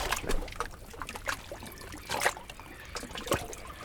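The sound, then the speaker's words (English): Small waves lap and splash gently against the shore in irregular, soft bursts, with a faint constant wash of water beneath them and no voices. “just sitting here listening to the waves and just watching them go by, it's just memorizing and it's so relaxing.”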